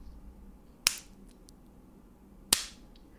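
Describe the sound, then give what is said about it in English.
Two sharp, slapping smacks spaced about a second and a half apart, someone imitating a hand slapping buttocks, each a crisp bright crack that dies away quickly over a quiet background. “And all you would hear is just ass slaps.”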